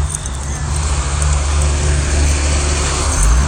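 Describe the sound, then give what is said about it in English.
A big truck rumbles past, its deep engine drone steady and loud throughout with a broad wash of road noise, swelling slightly toward the end. “And hold on. It's a big truck.”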